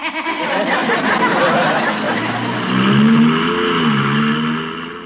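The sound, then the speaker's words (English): A car with no gear shift revs and accelerates, its pitch rising smoothly without gear changes as it drives off, loud, with faint background chatter. “Oh, what an adorable car. Look, no shift.”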